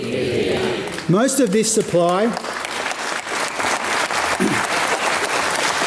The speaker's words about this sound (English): Yes, Jim Chalmers received his sole round of applause during his budget speech for an aspiration.